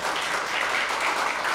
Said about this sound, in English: Let's give him a nice round of applause, will you?